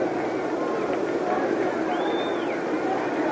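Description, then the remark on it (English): A baseball stadium crowd at a game involving the Cardinals shouting and yelling with excitement, a dense, steady roar of many overlapping voices, with a brief high whistle-like tone rising and falling partway through. “Now the crowd is catching the excitement, talking it up, shouting, yelling.”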